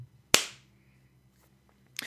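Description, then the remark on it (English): One sharp hand clap rings out on its own after a spoken 3, 2, 1 countdown at the start of a show, a loud, crisp snap with a brief trailing decay, followed by near silence and a faint low hum. “Then we'll do the countdown and the clap.”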